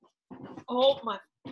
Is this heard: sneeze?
no